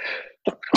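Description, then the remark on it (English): A sharp sneeze from someone with allergies: a hissing intake of breath, a short pause, then an explosive burst followed quickly by a second one. No one talks. “My bad. I have allergies.”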